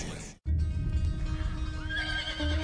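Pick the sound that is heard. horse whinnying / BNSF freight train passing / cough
horse whinnying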